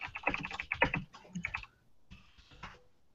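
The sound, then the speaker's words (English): Rapid typing on a computer keyboard while fielding questions, a quick burst of clustered clicks and taps, pausing briefly before a shorter final flurry of keystrokes. “I apologize for all the typing.”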